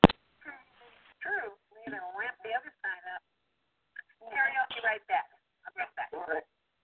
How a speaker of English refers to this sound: Okay, there's an echo. Yeah, somebody has an echo. If you guys are using a cell phone or if you guys are listening on the computer and you have a microphone hooked up, if you could just turn the microphone off when you're not talking.